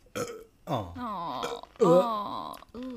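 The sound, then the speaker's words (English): A series of loud burps, four drawn-out croaking belches in quick succession, each with a strained, throaty tone and short pauses between them. “I've got a burp brewing, but it doesn't want to come out yet.”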